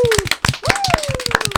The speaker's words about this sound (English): I we do have a live audience here in Ottawa, so they can help me wrap up the close of season 1. So can I give a round of applause, everybody? Season 1's a wrap.